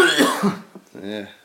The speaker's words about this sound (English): This is gonna happen a lot. You're gonna have to edit out all the coughing, aren't you?